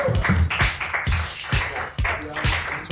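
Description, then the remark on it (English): A crowd applauds a comedian loudly and steadily for about three seconds, with a strong, regular thumping beat running under the dense wash of clapping. “Ladies and gentlemen, a round of applause”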